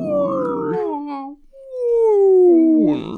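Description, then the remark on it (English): A person imitates a whale call with two long, moaning vocal tones that slide slowly downward in pitch, fairly loud, separated by a brief pause. “What does the whale say?”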